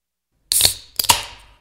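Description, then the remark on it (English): A drink can cracked open on its own: a sharp snap with a bright fizzing hiss that fades, then a second quick metallic click and rush a half-second later. “Crack one.”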